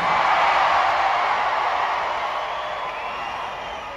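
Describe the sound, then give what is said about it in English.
A large crowd at a live event in Cincinnati on a Friday night roars and cheers in a dense, steady wash of noise that stays loud throughout and eases off only slightly toward the end, with no clear voices standing out. “But the crowd was just amazing on Friday night in Cincinnati.”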